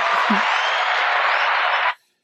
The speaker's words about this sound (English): Clap again.